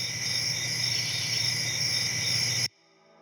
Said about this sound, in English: Yeah, crickets.